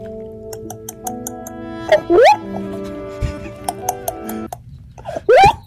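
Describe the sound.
A person mimics a raven's call with two loud croaking cries a few seconds apart, each sliding upward in pitch, over a steady droning hum in the background.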